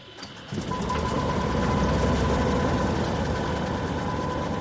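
A Cessna propeller plane engine catches after a brief quiet moment and settles into a loud, steady rumbling idle with a faint whining tone on top, without speech, before a guided flight over Pacific Lumber's 211,000 acres of forest.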